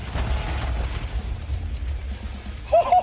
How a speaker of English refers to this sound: And this right here, ladies and gentlemen, is the realistic cannon. What does that mean, charging? How long do I charge it for? What's that sound? What's happening? I'm scared!